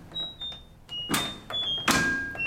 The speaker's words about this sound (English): What, and a bit of door slam? What happens there is one of his mates comes in and just starts banging the door, and he's offering nothing.